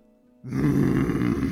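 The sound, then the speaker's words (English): A voice imitates a creature's roar in the woods: after a brief quiet moment, a sudden loud, low, rough growling bursts out and holds steady for about a second. “Which then leads to a sudden roar.”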